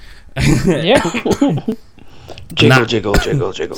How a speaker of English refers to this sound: Excuse me, that is making me cough because I'm still ill somehow.